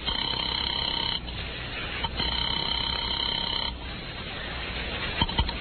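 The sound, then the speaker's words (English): A telephone ringback tone heard through a narrow phone line on an outgoing call to a bookie joint: two long ring bursts separated by a short pause, steady and fairly loud, followed by quieter line hiss and faint clicks. “I picked up the phone to call a bookie joint run by a guy named Joey Galt”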